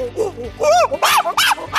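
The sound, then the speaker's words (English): A run of loud monkey calls: about five whooping, screechy cries with rising and falling pitch, quick and excited, separated by brief pauses, with no talking. “Maybe some sounds like a laser gun. Or some monkeys.”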